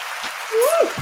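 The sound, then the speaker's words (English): A brief burst of crowd applause, a steady wash of clapping with a rising whoop or cheer from a voice cutting through partway, ending after about a second. “Can I get an applause?”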